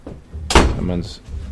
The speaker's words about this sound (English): Someone just opened your door. Oh no, it was just a little bit open, and then I heard a little bit of jar.